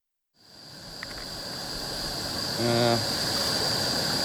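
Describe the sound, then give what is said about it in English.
A steady, dense hiss and rumble of water boiling on a camp stove starts abruptly and holds at an even level, with a brief low tonal hum rising partway through. “Is that water boiling?”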